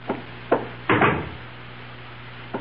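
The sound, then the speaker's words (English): A few sharp knocks rap on a wooden door at an uneven pace, a porter with a package knocking, two single taps followed by a heavier cluster, then one more faint knock after a pause, over a low steady hum. “Someone's at my door.”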